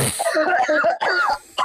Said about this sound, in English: No, now you're coughing dry, brother.